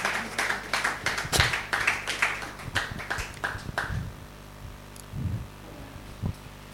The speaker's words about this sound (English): Or can somebody clap his hand for Jesus?